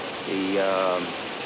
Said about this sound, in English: That's the rain in the background, by the way.